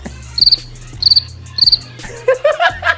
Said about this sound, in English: I'm going to give you maybe we'll do crickets anyway. Yeah, no, crickets would be excellent, man.